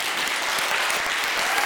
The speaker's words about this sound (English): everyone else in this room, stand on your feet, and please applaud